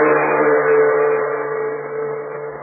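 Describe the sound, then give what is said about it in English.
A big truck's heavy engine rumbles steadily as it clatters down the Burma Road toward a river, a dense, continuous drone with rattling undertones and no voices. “The big truck clatters and rumbles down the Burma Road, bound for a nearby river.”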